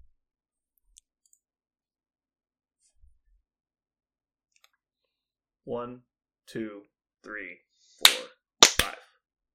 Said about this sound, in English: Wow, you clapped like two full seconds.